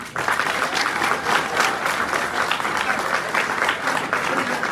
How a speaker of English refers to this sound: Round of applause for my wife. Stand up, babe. Round of applause.